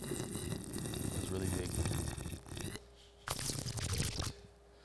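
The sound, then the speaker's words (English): A fizzy drink crackles and hisses steadily for a few seconds, pauses briefly, then surges again in a louder fizzing burst before fading out. “Oh, mine wasn't as fizzy. But here, listen.”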